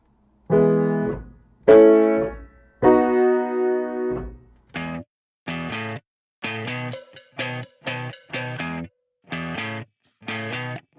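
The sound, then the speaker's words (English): Distorted electric guitar plays three long, ringing chords, then switches to short, punchy chord stabs in a steady, bouncy rhythm, from a power pop (a form of pop rock) song built entirely on these three chords. It sounds loud and energetic, with no singing. “As a genre, this is considered power pop, which is a form of pop rock.”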